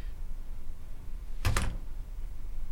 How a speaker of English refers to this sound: I was going to say shut the door, but yeah, that too, I guess.